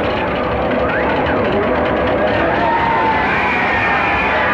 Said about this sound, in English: So let's go mad for one unforgettable day. Everybody's yelling and cheering and, hey, old chap, it's over.